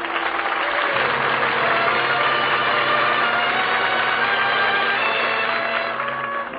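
A bus engine idles steadily, a continuous low rumbling drone with a rough, slightly knocking texture that holds even for several seconds, easing off a little at the very end. No one speaks.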